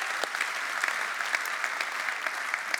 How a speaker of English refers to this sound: Oh, there's a lot more clapping now.